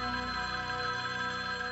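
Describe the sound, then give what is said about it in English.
A telephone rings steadily for the whole moment, a bright, sustained electronic trill with no voices over it, heard at moderate volume. “And the phone rings.”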